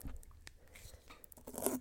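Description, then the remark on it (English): Dry paper crackles and crunches in a series of quick, uneven rips, with short sharp bursts and a louder crinkling flurry near the end, as a paper wrapper is torn away from a drink bottle with a screw-off cap. “Nope, that was the paper.”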